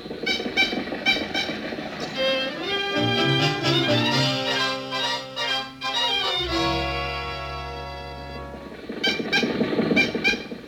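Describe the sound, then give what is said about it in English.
A car engine struggles to start with wheezing, sputtering, honk-like tones that climb and waver, then settles into a loud, steady running drone before more ragged coughing noises at the end. “Why do they always gather when we try to start the car?”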